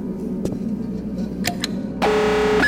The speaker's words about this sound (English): What did you do? I put the lights on. And you just set off an alarm. Damn it. So who's gonna hear it? This place is abandoned.